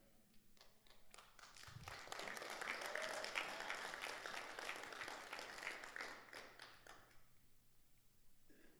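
audience applause

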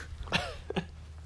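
coughing

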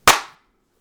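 single hand clap

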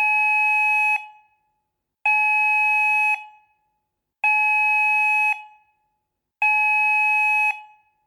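fire alarm beeping

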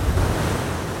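ocean waves

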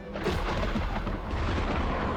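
thunderstorm with rolling thunder

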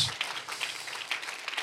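audience clapping hands

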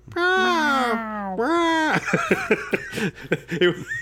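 cat howling

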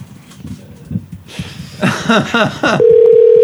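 telephone dialing and ringing

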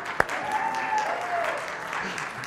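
audience clapping

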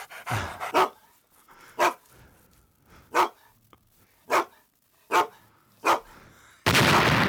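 dog barking

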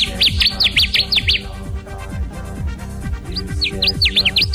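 connecticut warbler song

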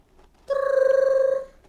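telephone ringing

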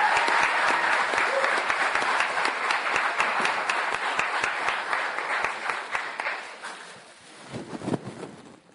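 audience applause

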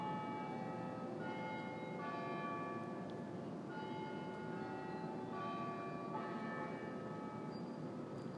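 church bells ringing

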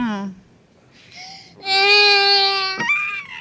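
baby crying

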